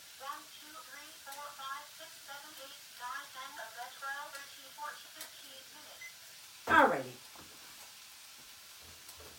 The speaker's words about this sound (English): Okay, this has already started sizzling, so I'm gonna take it down to medium. Saute your onions for about 10, 15 minutes, okay?